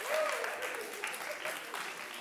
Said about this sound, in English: It's going to be an easy crowd tonight if I'm getting applause at that question.